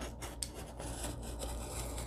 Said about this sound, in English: Oh, can you hear the paper cutting?